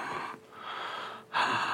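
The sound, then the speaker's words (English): A voice imitates heavy breathing, meant as Beethoven breathing: three loud, airy breaths in a slow in-and-out rhythm, the last one harsher and stronger, with no talking. “Breathe, the breathing, Beethoven breathing.”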